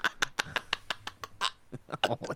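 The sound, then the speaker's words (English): A voice attempts a Daffy Duck impression, a quick run of raspy, sputtering quack-like squawks in uneven bursts, fairly loud with no other talking. “He tried to do Daffy Duck.”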